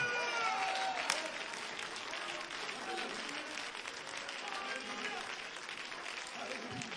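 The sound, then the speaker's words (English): A Pentecostal church audience claps their hands together in a dense, sustained wash of applause that holds steady for the full seven seconds, with faint voices and cries mixed in underneath. “Come on, clap your hands.”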